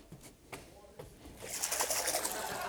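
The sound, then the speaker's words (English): A few faint knocks and taps, then water begins trickling and splashing steadily into a baptism pool, a soft continuous bubbling rush that holds to the end. “There's water.”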